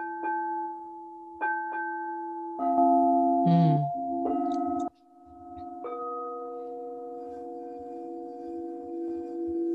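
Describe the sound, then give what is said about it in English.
Two sustained metallic tones, the notes C and G, ring together a perfect fifth apart, struck several times and left humming steadily, with a brief warbling rub midway and a long, bell-like fade. “So I have a C and a G, which actually creates a perfect fifth, which is just the same sound frequency.”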